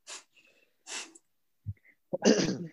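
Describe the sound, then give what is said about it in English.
Two short breathy bursts, then a louder, harsher explosive cough near the end, fairly loud with no talking, sounding somewhat forced or sneeze-like. “What are you coughing about?”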